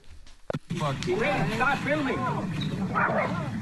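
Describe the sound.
A dog barks and yelps frantically as it chases a crocodile and is dragged into the water, its sharp cries running together over several seconds, tangled with loud, agitated human voices shouting.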